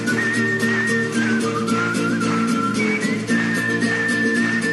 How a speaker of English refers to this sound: Don't laugh, whistle.